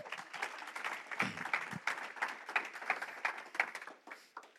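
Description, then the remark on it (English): A crowd applauds steadily for several seconds as the speaker's father is invited forward, many hands clapping in a dense, crackling patter that swells and dips slightly before easing off at the end. “Round of applause for my dad.”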